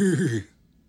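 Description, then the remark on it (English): A person imitates a horse's neigh with a single short, wavering vocal cry that drops off abruptly into silence after about half a second. “So just do the sound of a horse.”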